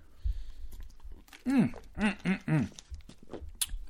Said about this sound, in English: I'm very parched. Hold on, let me take a sip of water. I didn't realize I had this water sitting next to me.